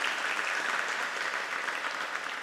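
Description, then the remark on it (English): A round of applause from a crowd, steady dense clapping at an even level that fills the whole stretch without pause, with no voices standing out. “This round of applause is dedicated to”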